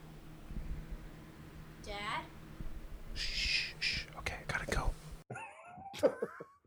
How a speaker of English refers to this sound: that's the fan I have to use to cover it up so my kids don't hear it.